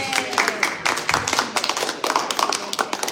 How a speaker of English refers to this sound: I think you should give me a round of applause.